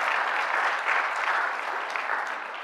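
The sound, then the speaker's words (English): Sustained applause from a large crowd, a dense, steady clatter of many hands clapping at once, fairly loud and even throughout with no voices standing out. “Oh, no, an applaud. Let me wait just a minute.”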